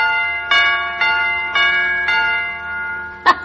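An electric doorbell chime's little hammer strikes metal chime pipes four times at a steady pace, each ring sustaining and overlapping, then a sharper, clunkier final strike. Fairly loud, no talking.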